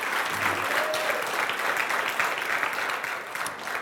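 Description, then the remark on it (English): Steady applause from an audience for the worship team after a worship service, a dense, continuous patter of many hands clapping at a fairly loud, even level for several seconds without voices standing out. “And just know this, as you clapped for them, they were clapping for the Lord, because that's why they do it.”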